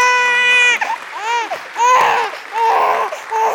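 baby screaming

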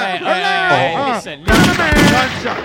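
DJ gunshot sound effect

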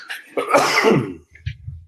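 sneeze

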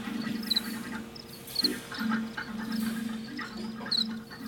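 cricket chirps

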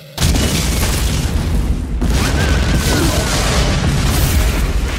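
grenade explosion

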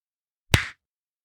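hand clap

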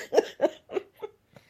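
cough

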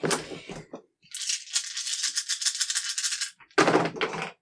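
dice being rolled

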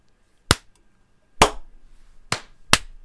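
sync hand clap

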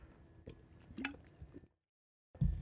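sipping water

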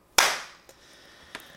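single hand clap

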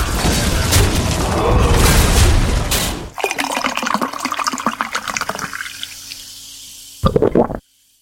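pouring a drink

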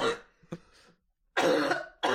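cough

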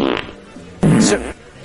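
fart sound effects

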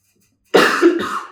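cough

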